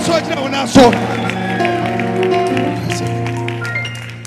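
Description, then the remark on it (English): An audience claps and shouts to the Lord over sustained, droning music, with a sharp burst near the start and scattered quick claps running through the din at a steady, loud level. “Clap your hands and shout to the Lord and rise your feet.”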